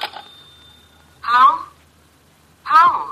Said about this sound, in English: Excuse me, the phone.